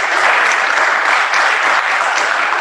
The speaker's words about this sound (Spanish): Los queremos mucho y muchas gracias por estar aquí con nosotros. Un aplauso.